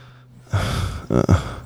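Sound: heavy breathing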